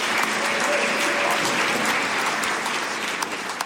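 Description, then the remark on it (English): An audience claps steadily after a baptism, a dense, sustained patter of many hands at fairly even loudness for several seconds, with no voices rising above it. “Yeah, you can definitely clap for that.”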